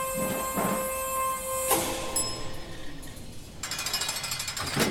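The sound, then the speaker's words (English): An elevator descending: a steady mechanical hum with whining tones, broken by several loud clanking, rattling bursts and a grinding rumble near the end. No one speaks. “Someone's coming down the elevator.”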